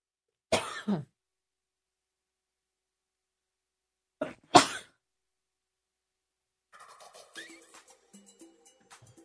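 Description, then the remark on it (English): Two separate bursts of harsh coughing and throat clearing, a few seconds apart with silence between, followed by faint, scattered background noise. “I don't have a cough button.”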